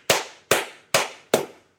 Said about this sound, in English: decided to give you a slow clap, but I'm actually genuinely happy for you. No, it's a slow clap. That was the clap, you know, that you see at the end of the films where someone says something really profound and amazing.